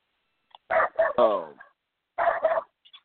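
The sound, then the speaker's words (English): A small dog yaps: a quick run of sharp, high barks, one stretched into a yelp, then a short pause and two more barks. “Hey, that sound like a small dog too.”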